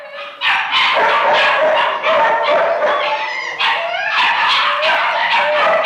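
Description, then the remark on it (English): Many dogs bark together in a loud, overlapping chorus, with yips and howls mixed in, echoing continuously in a downstairs room where the dogs are quartered. “an attendant who took him downstairs to the room where the dogs are quartered.”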